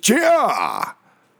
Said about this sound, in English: That was a sneeze.